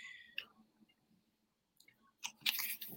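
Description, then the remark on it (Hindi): A guest on a show drinks water: a few soft, wet sipping and swallowing sounds spaced apart, ending in a louder cluster of gulps, with no talking. “Aunty जी हाँ पानी ले लो। पानी पी लेती हूँ।”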